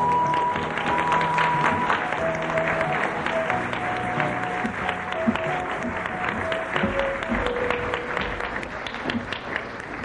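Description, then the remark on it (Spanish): An audience applauds steadily for Master Chinghai before a lecture, a dense wash of many hands clapping that holds at an even level for about ten seconds, with faint sustained musical tones running underneath. “Un aplauso para la gran maestra Chinghai.”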